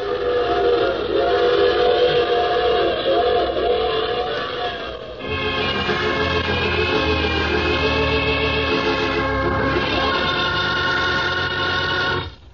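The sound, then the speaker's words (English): A loud, sustained train whistle wails for the whole stretch, its pitch shifting midway as a low rumble of a passing train swells underneath, with no voices present. “I take this same train every week at this time.”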